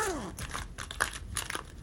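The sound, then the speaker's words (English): Someone rummaging through a med kit for something for phantom limb pain, with busy crinkling and rustling of packets and small clicks of items being shifted, continuous for a couple of seconds with no talking. “Now, I got stuff for it in the med kit. Here.”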